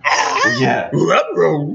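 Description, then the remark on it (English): A dog lets out loud, drawn-out vocalizations in three quick bursts, wavering whines and yowls that rise and fall in pitch, with no one talking over them. “Oh, there's the dog. Okay. Confused dog.”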